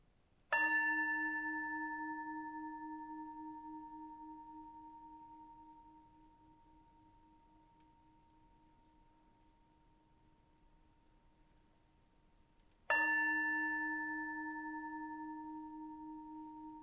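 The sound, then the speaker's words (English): A bell is struck twice to open a worship service, about twelve seconds apart, each strike ringing out clearly with a pure, sustained tone that slowly fades in the quiet. No voices are heard. “And may the bell call us fully into this space of worship.”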